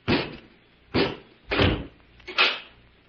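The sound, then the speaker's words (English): A door shuts with a heavy thud, followed by several more sharp clunks and scrapes, like a bolt being slid and latched, as a robot closes and bolts the door, with no one talking. “Robot One, close the door and bolt it.”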